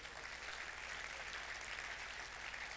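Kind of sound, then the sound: crowd, audience clapping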